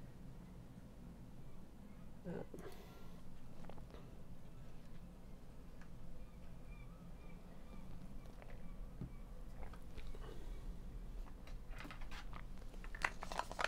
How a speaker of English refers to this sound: Let me eat some vitamins.